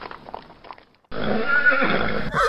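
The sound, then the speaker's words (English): A loud horse whinny from a calèche drawn by four horses at the Borgo Pass, under black clouds with thunder in the air, bursts out after a second of quieter, muffled hoof clatter, the shrill, wavering neigh filling the rest of the moment with no talking. “A caliche with four horses had drawn up beside us.”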